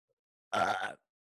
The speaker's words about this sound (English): You warned me. You can burp on this show, you said.